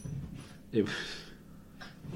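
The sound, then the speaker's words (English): A dog pants and snorts during wild play in a few rough, breathy bursts, with one short throaty snort near the start and quick huffs trailing off. “dogs having a mad half hour.”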